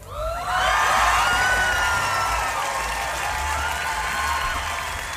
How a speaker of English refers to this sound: Thanks everybody for clapping for me.